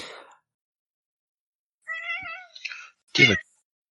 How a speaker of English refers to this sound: Yeah, so like I'm in my chair, right? And she comes over in front of me and she starts meowing.